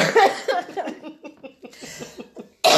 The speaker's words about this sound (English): Pray I don't puncture a lung with these. You're not gonna puncture a lung. Ugh! Every time I cough, it hurts.